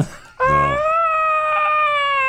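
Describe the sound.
A voice lets out a long, high-pitched scream imitating a falling pear, starting with a brief buzzy burst and then holding a steady, piercing wail for about two seconds.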